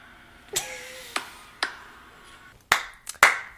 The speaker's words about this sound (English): clap your hands.